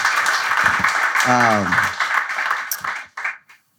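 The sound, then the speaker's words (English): Sustained applause from an audience at a Bitcoin event, dense and steady, with a voice calling out briefly over it before the clapping tapers off and stops. “One more big round of applause”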